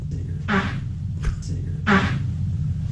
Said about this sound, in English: Let's break this down real quick. Cause you hear the toots, and then you hear Antonio Brown My bad.